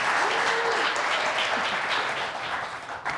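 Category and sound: crowd, audience applauding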